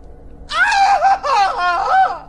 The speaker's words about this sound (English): screamed again as his shirt tore once more. Strips of flesh flapped wetly across his lacerated back.